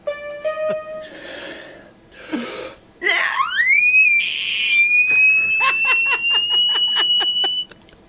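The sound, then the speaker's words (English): A voice imitates a velociraptor scream: short tones and breathy rasps, then a loud screech that sweeps upward into a long, piercing high shriek with rapid clicking pulses underneath. “Best velociraptor imitation ever.”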